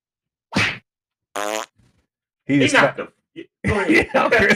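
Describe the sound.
A single sharp, loud slap cracks out, followed a moment later by a short, buzzy fart knocked out of the person slapped; afterward people react with voices and laughter.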